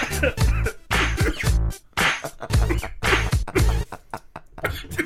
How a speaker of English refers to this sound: I didn't know boxing makes you cough. Extreme cardio does.